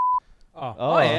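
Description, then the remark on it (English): A short, loud, steady censor bleep tone covering a spoken name cuts off abruptly, followed by a brief pause before someone starts talking. “Yeah, can you bleep the name? I can post edit bleeps.”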